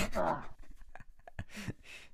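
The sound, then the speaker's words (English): A loud sneeze bursts out at the start, followed by a short pause and then a couple of breathy, hissing exhalations, like sniffling after the sneeze. “Start talking about weed, I start sneezing.”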